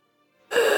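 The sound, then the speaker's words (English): A voice imitates a harsh, raspy gasping breath, bursting in loud and noisy after a brief near-silence and holding steady as a single rough inhale. “You hear this raspy breath.”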